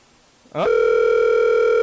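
After a short rising electronic sweep, a steady outgoing phone call ringing tone, a call to someone's brother, begins and holds unbroken and fairly loud, a bright buzzing drone with no voices over it.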